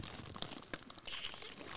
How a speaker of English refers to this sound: I think that's all the food wrapped up. I'm going to... Sorry for all the noise.